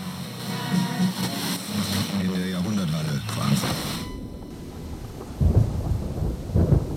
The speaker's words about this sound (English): First thunderstorm in another country. Looks like a big one.